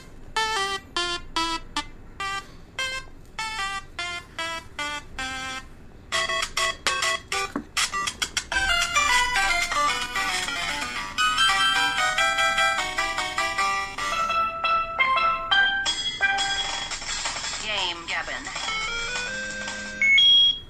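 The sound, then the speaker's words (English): An electronic segment timer alarm plays a bright, beeping ringtone-like melody that stutters and skips in the middle, then continues as a denser, warbling chime for about twenty seconds. “May have heard a little hiccup in the timer there.”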